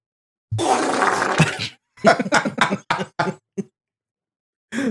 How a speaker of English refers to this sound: Now play the fart.